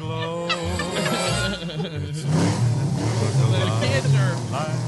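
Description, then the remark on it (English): A tractor engine rumbles past in a Christmas parade, its low drone swelling and shifting as it goes by, with voices talking loudly over it throughout. “He's passing the tractor.”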